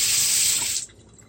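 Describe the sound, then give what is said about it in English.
A faucet runs in a steady, hissing stream for under a second, then is shut off abruptly, leaving faint quiet. “Mom, can you turn off the water?”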